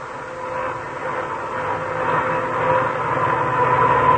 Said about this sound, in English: Now, when you hear a humming like that, you know that car has worn out gears. And probably they're worn because the owner forgot to change to winter gear lubricants when cold weather came.